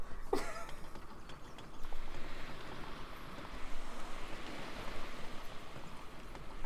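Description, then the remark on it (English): Steady rushing wind mixed with the wash of ocean waves along a coast, swelling louder every couple of seconds in a continuous roar, with no voices. “There's winds and waves.”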